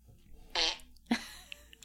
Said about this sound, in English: Downloaded the app titled Fart World. Yeah, you did. And it has a number. I haven't tried number 20 yet.